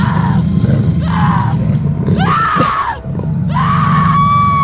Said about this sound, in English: I screamed out for help as he was circling me.